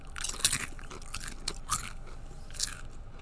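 Banana-flavoured crisps bitten and chewed: a handful of sharp, brittle crunches at irregular intervals, with quieter mastication between them and no talking.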